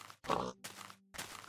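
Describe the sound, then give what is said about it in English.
A video game pig oinks three times in quick succession, short nasal grunts with a steady low hum between the first two, no talking. “But I also want this pig.”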